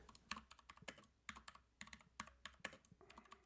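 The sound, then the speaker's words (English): Rapid typing on a computer keyboard while writing a social media post, a steady run of sharp key clicks in an uneven rhythm, with no voices. “here's my keyboard. Listen, I'm just going to write in Twitter here.”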